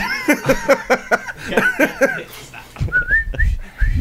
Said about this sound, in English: I could do the whistle shit.